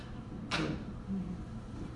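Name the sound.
small door being opened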